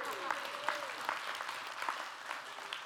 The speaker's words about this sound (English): And I know that this isn't the moment that you typically do this, but just to make me feel better, would everybody clap and say amen to that?